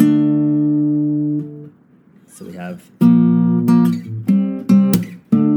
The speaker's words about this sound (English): And then we have a slap. With your picking hand, slap all the strings.